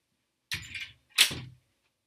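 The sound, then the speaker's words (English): A door being closed: two quick, fairly loud bursts about half a second apart, a rustling rattle then a firmer thud-like shut, with silence around them and no talking. “I actually have to go close my door real quick.”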